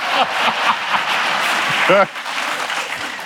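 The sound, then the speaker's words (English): Steady crowd applause at an on-stage talk at the 92nd Street Y, a community center in Manhattan's Upper East Side: a dense wash of clapping at constant loudness for a few seconds, with a brief voice rising above it near the end before the clapping thins slightly. “Keep the applause when you get them.”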